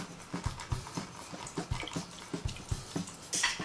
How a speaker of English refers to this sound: The next step I like to do is use my lime. And it's half a cup of lime to a half a cup of water to a half a cup of sugar mixed all together. And now I have to squeeze the lime.